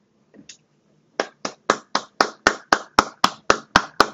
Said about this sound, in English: Give myself a clap. That's a cool little nudge for me.